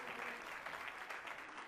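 A worship audience claps steadily in a dense, continuous wash of applause, fairly loud and sustained, giving Jesus a hand clap of praise. A faint voice murmurs underneath.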